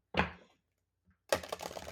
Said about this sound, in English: And I am using the Everyday Witch Tarot Mini Deck by Deborah Blake. Super cute. So let's just give the cards a little bit of a shuffle.